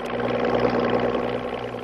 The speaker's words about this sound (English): That same night, a motorboat with Lieutenant Watkins at the helm slips out across the bay.